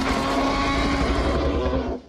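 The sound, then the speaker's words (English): A T-Rex roar sound effect: one loud, rumbling, gravelly roar held steady for about two seconds with no talking, then quickly dying away at the end. “T-Rex all the way.”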